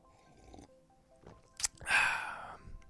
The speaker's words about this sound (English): Excuse me. It's time to take a sip of coffee.